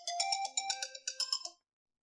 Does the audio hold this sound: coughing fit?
no